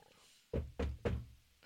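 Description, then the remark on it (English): Three quick, solid knocks made with both hands on a hard surface, evenly spaced, each a dull thump with a short ring-out, over a quiet background with no talking. “I crossed my fingers and knocked three times with both hands.”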